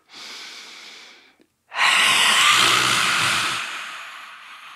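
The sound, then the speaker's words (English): A softer breath lasting over a second, a brief pause, then a long, loud, forceful lion's breath exhalation pushed out through an open mouth over the vocal cords with a raspy, breathy roar that slowly fades, all with no talking. “So you're just really forcefully pushing air out and not letting it – and let it ride over the vocal cord.”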